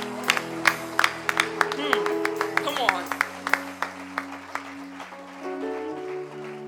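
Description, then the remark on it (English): An audience at a Sunday church service claps their hands in praise in scattered, sharp bursts for several seconds, set against sustained, steady keyboard chords that hold underneath the whole time. “If you're happy to be in that house of that God, come on, let's raise a hand clap of praise to him real quick.”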